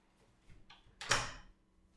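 A door swings shut, a short sweeping rush ending in one soft thud, with faint handling sounds just before and no one speaking.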